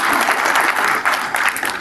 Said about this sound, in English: You can clap on that one. Yeah. Because I have no interest in the church of man. I have interest in the church of Jesus Christ. You can clap for that one too.